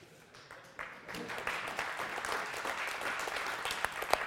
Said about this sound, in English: We're cheering you on, man.